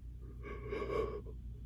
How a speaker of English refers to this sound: Boy, I am yawning this morning.